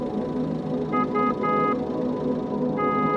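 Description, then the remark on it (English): A car rumbles steadily and loudly, its engine noise continuous throughout, while the horn sounds in a few short honks, three in quick succession and another near the end. “The noise of the car makes me feel angry.”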